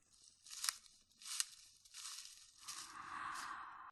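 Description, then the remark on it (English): Dry leaves crunch and rustle underfoot in a slow, steady rhythm of about five crisp steps, each a brittle, crackling burst, with a softer continuous rustle toward the end. “Listening to the rustling sound of the leaves, the horse immediately notices and is up on the feet.”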